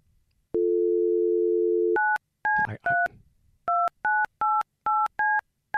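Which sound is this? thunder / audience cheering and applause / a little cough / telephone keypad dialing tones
telephone keypad dialing tones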